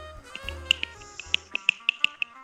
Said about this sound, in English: Can you hear that? What is that? That was me snapping.